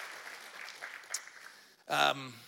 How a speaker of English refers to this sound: I want you to give yourself a round of applause. You've been clapping for me. Clap for yourselves. Thank you.